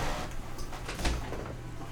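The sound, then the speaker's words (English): Muffled rattling and clunking as someone tries to open a door, with one sharper knock in the middle, set against a steady low hum and room noise. “Oh, somebody's trying to open the door.”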